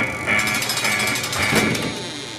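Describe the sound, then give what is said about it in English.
A door opens with a loud, continuous mechanical rattle, a rapid pulsing clatter over a steady high-pitched whine that lasts a couple of seconds, with no voices. “I'll just open the door here.”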